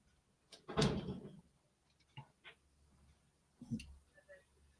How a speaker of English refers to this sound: Whatever it was, it slipped my thought because I think the guys are outside banging on doors just to bang on stuff,